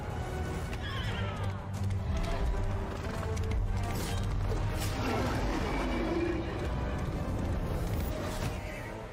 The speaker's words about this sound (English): Oh, there goes the horse.